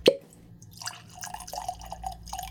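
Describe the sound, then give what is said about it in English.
A sharp glassy clink, then Barrel Vantage whiskey glugs and splashes into a glass in uneven bursts, fairly quiet, with no one talking. “So let's go and get this Barrel Vantage poured.”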